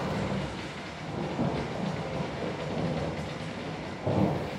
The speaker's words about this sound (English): The therapy can be compared to the sound of raindrops falling on a roof, being noticed when it first starts raining, but going unnoticed and put out of mind after some time.